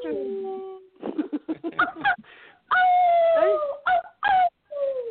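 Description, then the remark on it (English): Several people let out long, rising and falling howls in imitation of a wolf or coyote, loud, in overlapping bursts with short yips and breaks between them. “Let's hear that howl again.”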